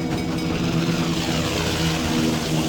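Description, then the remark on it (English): A helicopter arriving, its steady, droning engine and rotor hum low and continuous at an even loudness throughout, with no voices over it. “Sir, the Lasco's chopper is arriving.”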